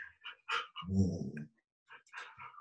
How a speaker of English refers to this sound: The dog is hot. You need to be quiet.